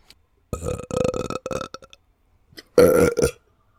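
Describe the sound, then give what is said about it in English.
A person lets out a long, croaky burp, then after a short pause a second, louder and shorter belch. Both are wet-sounding, with no talking over them. “Do they have ASMR videos of people burping?”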